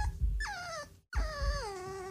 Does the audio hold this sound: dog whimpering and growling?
yes